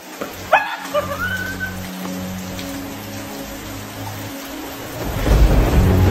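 Steady rain hisses throughout, with a deep, rolling thunder rumble building loudly toward the end. A few brief high chirps sound early on.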